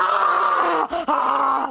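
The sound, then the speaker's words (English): A person growls out a loud, drawn-out roar imitating Maury as a fire-breathing dragon, broken by a quick breath partway through before the throaty bellow resumes. “All of a sudden, Maury is a fire-breathing dragon.”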